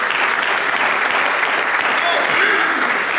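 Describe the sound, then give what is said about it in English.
An audience breaks into sustained applause, a hand clap of praise in a morning worship service: a dense, steady wash of many hands clapping at an even loudness throughout, with no single clap standing out. “If anybody believes it, give him a hand clap of praise this morning.”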